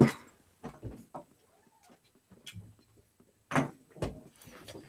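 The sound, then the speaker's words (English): A female dog lets out a soft, rising-and-falling whine, faint and brief, wanting to be let in or out, between several sharp door-like thumps and rattles. No one speaks. “The dog whines. See, now she wants in, she wants out.”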